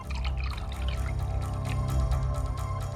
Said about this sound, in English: Comfortable? Here. I'll pour you some water.